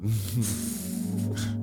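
A loud sneeze with a voiced, drawn-out cry, broken by sharp breathy bursts of hissing air, heard on its own without any talking.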